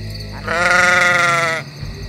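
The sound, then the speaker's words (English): A single loud, wavering sheep bleat lasting about a second, clear against a low background hum, with no talking. “You've just heard the cry of the sheep squatch.”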